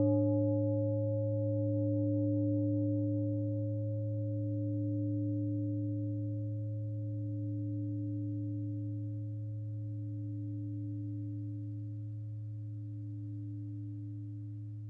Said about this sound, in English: Please listen to the sound of the bell as you breathe in and as you breathe out until there's no sound to be heard.